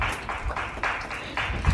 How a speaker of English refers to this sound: Oh, 8 p.m. Thank you. They're clapping for the NHS. Thank you, NHS.